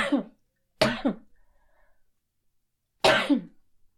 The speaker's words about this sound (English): Am I sneezing again? Goodness, I still feel sneezy.